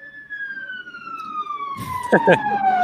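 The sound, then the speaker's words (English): Police car sirens wail steadily outside, the pitch sliding gradually downward as they pass by; partway through, a person starts talking over the fading siren. “sorry, cop cars outside.”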